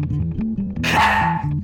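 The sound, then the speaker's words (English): A person imitates a dog, making a quick run of short, voiced barking sounds that builds into a louder, rougher bark, with no other talking. “Turn into a dog, go, and bark at him, because I think he's afraid of dogs.”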